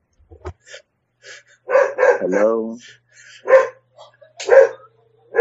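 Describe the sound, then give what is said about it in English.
A dog named Digby barks in several short, sharp bursts, fairly loud, with a longer whining yelp early on and quiet gaps between the barks, as it goes after a person and grabs their arm. “Oh no, get that dog away from me!”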